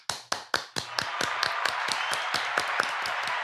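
A short round of applause: sharp, steady hand claps in a quick regular rhythm, with a fuller wash of clapping building up beneath them and holding steady to the end.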